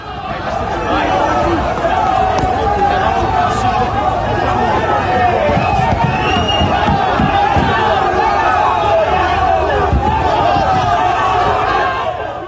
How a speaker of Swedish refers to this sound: Och det vi fick höra där var ljudet från när tränaren Ronald Koemans bil skulle lämna Camp Nou, omringades av supportrar, arga supportrar. Situationen var hetsk och hotfull och Barça har fördömt det inträffade.